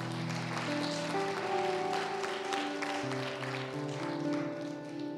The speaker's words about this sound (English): Why don't we applaud every mom that prays for their families today? And every child, every young person, you're honoring your parents by being here. We're going to applaud you today as well.